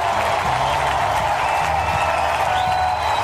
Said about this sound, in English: And listen to the ovation for Miles Michaelis, so well deserved.